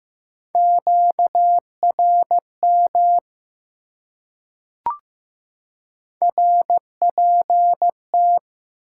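Morse code beeps at 15 words per minute, sending common amateur radio QSO elements: a clear, steady single-pitch tone keyed in dots and dashes, broken by a pause with one sharp click, then resuming. No voices.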